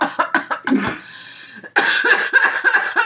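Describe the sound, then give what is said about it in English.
A person coughs repeatedly from a THC extract vape cartridge, a rapid string of harsh, raspy bursts, then a brief pause before another fit of choppy coughing. “I'll try it since these make me sneeze instead of cough.”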